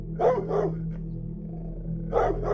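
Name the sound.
dog barking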